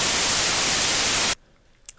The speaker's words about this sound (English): No, yeah, I'm definitely going to put static over parts where I don't want people to listen, because nice.